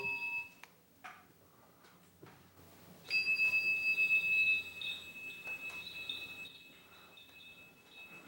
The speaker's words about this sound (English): That instrument is played while the monks walk into the room, and he'll play it again when we leave. But we already heard that bell yesterday, so let's move ahead to